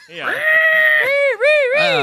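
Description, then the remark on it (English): A person's voice imitates the screech of Man-Bat coming down and feasting: a loud, drawn-out wail that rises, holds, then warbles and dips, with a brief catch before a final shrill burst. “Screeching.”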